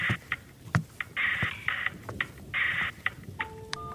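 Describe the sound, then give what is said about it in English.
A telephone rings in several short trilling bursts, fairly loud, with a few clicks between rings and a brief electronic tone near the end; no one speaks. “at your phone? Yeah, I think so. Hang on.”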